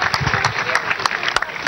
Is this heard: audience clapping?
yes